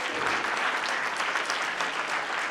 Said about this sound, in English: I know y'all just stood up and clapped